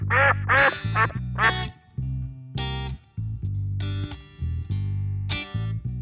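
duck call quacking

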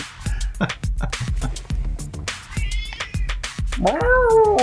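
cat meowing loudly

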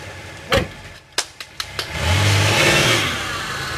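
car engine accelerating away

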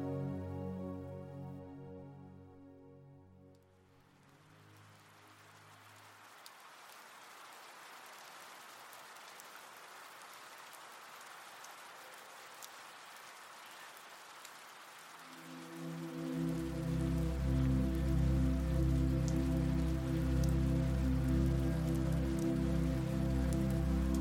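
gentle rain falling

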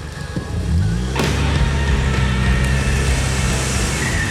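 car reversing fast

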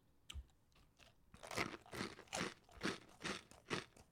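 someone chewing food

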